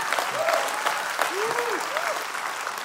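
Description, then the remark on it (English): An audience claps for the Lord with steady, dense clapping that fills the whole stretch at an even loudness, with a few brief voices calling out faintly beneath the claps. “These men who knew what a perfect lamb looked, yeah, you can clap for the Lord on that one.”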